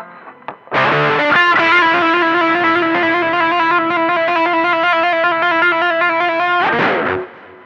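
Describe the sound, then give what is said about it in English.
A heavy, distorted electric guitar from a heavy metal shuffle tune rings out a loud, sustained chord for several seconds, thick and buzzing, then cuts off abruptly. No one speaks over it. “Yeah, and it's this shuffle tune that just like begs to be headbanged to.”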